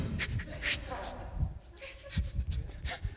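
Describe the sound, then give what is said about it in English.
A person imitates heavy, rapid panting after running back to the front door, a series of loud, breathy huffs in an uneven rhythm, as if out of breath. “And you run back to the front door and, you know, your parents or your wife is like, why are you breathing so hard?”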